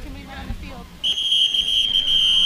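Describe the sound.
A referee's whistle at a Bad Axe Hatchets football game, in the third quarter, gives one long, loud, steady shrill blast that begins about a second in and carries to the end, following a moment of voices; it marks a timeout called by the Bad Axe Hatchets for having 12 men on the field.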